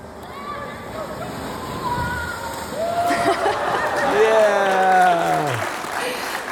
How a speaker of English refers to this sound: And so by the end of it, he starts hitting the water and jumping off the tube. So we wanted to show you a video of what he was doing.